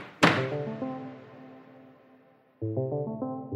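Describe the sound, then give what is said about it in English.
A single sharp, loud gavel knock as a judge rules against the company USIA, followed by low ringing musical chords that slowly fade, then a second chord enters near the end. “And so finally, the judge slammed the gavel down on USIA.”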